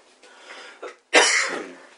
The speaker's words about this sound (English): Especially the way I'm coughing. It's great.